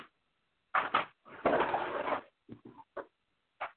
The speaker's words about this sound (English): Open the door. Make sure he ain't in my closet.